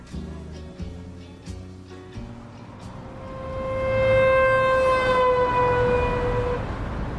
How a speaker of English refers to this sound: It sounds a lot like a city. Birds chirping, people chatting in the streets, loud police sirens, and very loud garbage trucks.